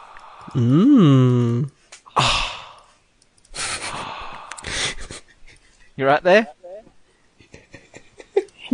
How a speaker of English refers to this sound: Heavy breathing.